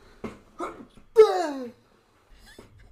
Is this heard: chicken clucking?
no